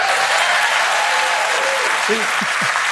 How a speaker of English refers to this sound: Even the cover gets applause.